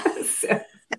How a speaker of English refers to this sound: Bless you.